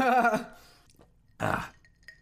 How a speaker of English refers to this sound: Oh, I burped. Fuck.